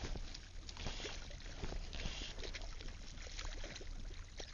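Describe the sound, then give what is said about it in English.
A hooked garfish thrashes and splashes at the water's surface, a busy, irregular run of small splashes and sloshes over a steady wash of background noise, with no one speaking. “You can hopefully hear this happy splashing, and it's really running.”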